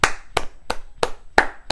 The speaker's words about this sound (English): Like, I have to applaud my damn self.